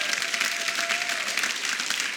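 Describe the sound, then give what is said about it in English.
A crowd at a church service claps steadily, a dense, sustained wash of applause at moderate loudness with no speech over it, holding evenly throughout. “Come on, let's give him a huge round of applause.”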